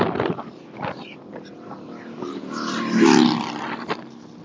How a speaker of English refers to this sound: I know it's windy and loud. My apologies.